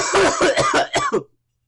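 A rapid burst of about five or six harsh coughs in quick succession, loud and close, trailing off into silence.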